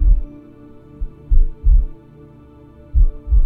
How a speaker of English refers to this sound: Now, let's find a pulse. Between your ribs is a good spot. Feel the heart organ beating.